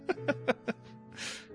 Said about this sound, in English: The dogs growl and it turns into a yawn, so they make funny noises.